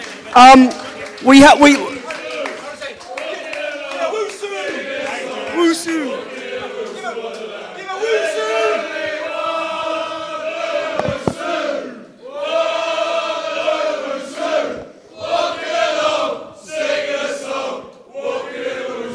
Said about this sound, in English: Let's have a round of applause for these two. Owusu and Mr. Powell.